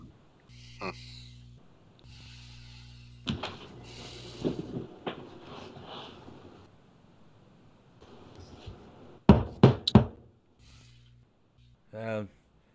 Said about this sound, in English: You knock on the door, but nobody rushes out to answer it. It's like a little storefront, little tiny storefront.